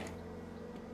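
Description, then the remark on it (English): A leaf blower drones steadily outside while it is snowing, a low, even engine hum with a buzzing tonal edge. It stays faint and unbroken throughout, with no voices. “And my dad's out there with his leaf blower doing God knows what.”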